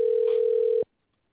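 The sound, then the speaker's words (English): A single steady electronic phone tone, like an outgoing call ringing, holds for under a second at moderate volume, then cuts off into silence. “We're calling live. Answer the phone.”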